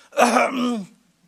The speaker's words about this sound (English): I have the odd greet a sad film. Okay. But I'm a man, I cough through it.